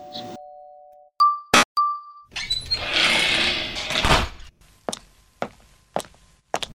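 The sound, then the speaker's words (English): A doorbell rings for a pizza delivery with a clear two-note chime, each tone ringing briefly, followed by a burst of rustling noise and a few sharp footsteps or knocks. No one speaks. “That's the pizza! Get back here! Saved by the bell!”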